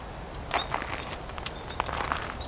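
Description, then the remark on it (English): A nuthatch pecking at tree bark, trying to get a bug out: soft, irregular dry taps spaced unevenly over a couple of seconds, with a few faint high bird chirps in the background and no talking. “No, it's a nuthatch making that sound. Trying to get a bug out of some tree bark.”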